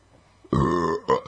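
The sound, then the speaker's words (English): A loud, drawn-out burp lasting about half a second, followed by a shorter second gulp-like belch, with quiet surroundings and no talking. “It says burp right there, so I had to do it.”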